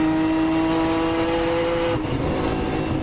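A loud, steady race car engine drone on a racetrack during a race, with strong sustained harmonics, shifting pitch abruptly partway through as if changing gear or lifting off as the car comes over a hill, with no voices.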